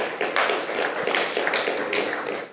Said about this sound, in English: Yeah, you can clap. It's good. It's good.